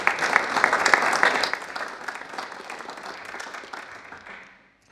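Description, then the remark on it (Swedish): An audience at a church service applauds to welcome the day's guests, many hands clapping in a dense, steady patter that starts loud and gradually thins and fades out over about five seconds. “En stor applåd.”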